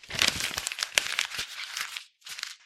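A paper page of a script being crumpled, a dense run of crinkling and crackling for about two seconds, a brief pause, then a short final burst of scrunching.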